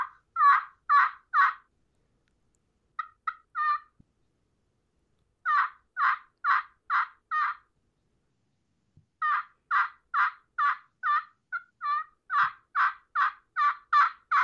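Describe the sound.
A Roger Parks turkey call made specifically for gobbler yelping produces a series of coarse, evenly spaced gobbler yelps in several bursts with short pauses between, loud, with no talking.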